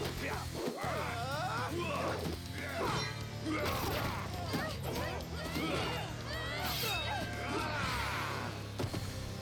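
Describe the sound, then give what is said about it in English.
A rapid barrage of punches that sound like laser zaps, with sweeping pew-pew tones mixed with smacks and crashes, loud and continuous over a steady low rumble. “As we all know, when your punches sound like laser strikes, that's pretty rough.”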